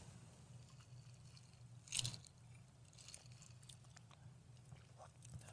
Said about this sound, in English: Mine is a 6-year age. It is 110 proof, so it's got a little more heat to it. And that's really all you need to know. We'll give some tasting notes here. We should have a little sip.